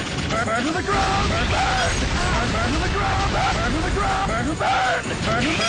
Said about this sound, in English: That's unedited, by the way. That is actually what this fight sounds like, because this boss has to scream at, like, every single attack he does for the entire long-ass fight.